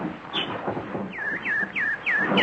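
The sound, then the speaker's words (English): A nightingale sings a run of five clear, high whistled notes, each sliding downward, repeating in a steady rhythm over a low, constant background hum. “Hello, pretty nightingale.”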